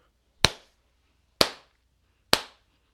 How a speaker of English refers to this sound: Slow Rudy clap for that.